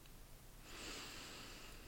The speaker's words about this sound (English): We're bringing this all together on day 6, and we're just going to start today with some deep breaths. Make sure you're not driving. Give your attention to your body and your awareness, and let's start with some deep breathing.